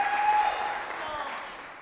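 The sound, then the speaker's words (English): A Christian audience at an Easter service breaks into steady applause for their living leader, a dense wash of clapping that holds fairly loud before tapering slightly, with a faint sustained tone underneath at the start. “It's worthy of a round of applause.”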